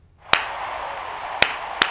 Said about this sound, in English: Oh, okay, I didn't know you were going there. Okay. Wow, we were clapping.